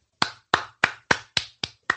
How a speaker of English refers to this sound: That's me clapping.